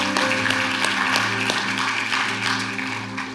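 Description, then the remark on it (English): An audience claps steadily for people who alternate making food every week for about 100 teenagers on Wednesday nights, a dense patter of many hands that holds at a fairly loud level and tapers slightly near the end, with a low steady hum underneath. “Like, they deserve a hand clap.”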